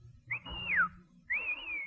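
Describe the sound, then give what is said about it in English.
Two loud, sharp whistles, one rising then sliding down, the other a long wavering tone, the kind of shrill blast used to hail a cab, with faint background rumble. “That was a taxi whistle.”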